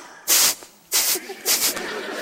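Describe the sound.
A person imitates a small Shih Tzu dog snorting to let her owner know she is there, waiting by the table: three short, breathy, hissing bursts of air, each roughly a quarter second long, spaced fairly evenly with quiet gaps between.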